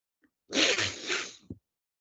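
A single congested nasal burst from a basketball broadcast commentator with a cold, breathy and hissing, lasts about a second, like a sniffle or sneeze. A short soft click follows. No one speaks.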